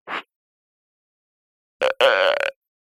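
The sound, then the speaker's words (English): A brief throaty sound, a pause of over a second, then a loud, croaking follow-up burp that stutters and stretches for about half a second before cutting off. No talking. “Oh, it's just a burp.”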